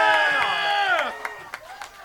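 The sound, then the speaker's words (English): A live audience at a show celebrating Stog's third birthday cheers with sustained, high whooping voices that trail off after about a second, followed by a few scattered, sharp claps. “Give it up for Stog!”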